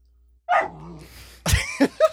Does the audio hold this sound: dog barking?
yes